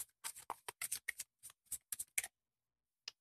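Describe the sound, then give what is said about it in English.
A deck of cards being shuffled, a rapid series of crisp riffling bursts over about two seconds, then a short pause and one last soft flick. No one speaks. “We're doing dice and cards tonight, guys.”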